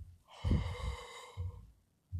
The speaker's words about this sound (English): So the number one thing that I do in order to relax is basically this breathing technique from yoga, where you empty out all the old air, inhale from the nose, and then exhale again out the mouth.